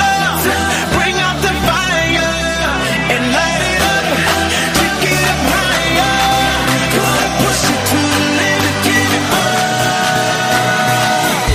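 A loud, energetic pop dance track with a steady driving beat, thick layered synths and sustained melodic lines that holds a constant high level throughout.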